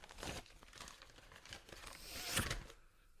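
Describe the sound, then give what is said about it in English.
Paper rustles and crinkles as a blank sheet is handled and turned over, with a sharper crackle near the end, then quiet. No one speaks. “Oh, I don't know why you're turning it over. There's nothing written.”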